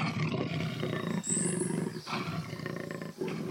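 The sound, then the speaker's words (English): A jaguar (Panthera onca) roars loudly, a deep, raspy, rumbling growl that surges in several heavy pulses with brief breaths between them and no voices present. “Panthera onca, the jaguar, is one of only five big cats in the Panthera genus.”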